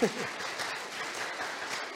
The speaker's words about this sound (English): And you guys can give her applause.